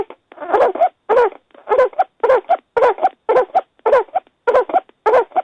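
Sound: dog coughing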